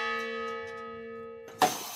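The Honor Bell of the Honor Bell Foundation, a large memorial bell rung slowly by veterans at Fort Logan National Cemetery, rings with a long, sustained metallic hum that lingers, then is struck again with a sharp clang. The slow, resonant strokes are steady, with no one speaking.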